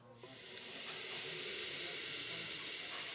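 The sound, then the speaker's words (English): A steady, loud hiss of steam released from a train at a station, the train continuing on to Bristol, swelling up within the first second and then holding as a continuous broad rush of escaping vapor. “Right, you got 5 minutes before my train carries on to Bristol.”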